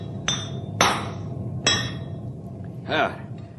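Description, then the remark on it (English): Hammer blows on a king-size horseshoe being fitted to Storm, a big horse: four sharp, ringing metallic strikes at uneven intervals, the last one softer and more drawn out, over a steady low rumble. “This horse of yours takes a king-size shoe, man.”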